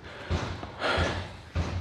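Three heavy, slightly muffled bangs land at an unhurried, even pace as someone next door hammers out a dent in a garage, each strike ringing briefly before the next.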